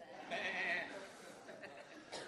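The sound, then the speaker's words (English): A crowd of people at a service bleating "baa" together at the speaker's prompt in imitation of sheep, a loud overlapping chorus lasting about a second, followed by scattered chuckles and murmuring voices. “Jesus is talking about he's the shepherd, and we're the... Look at your neighbor and go, bah.”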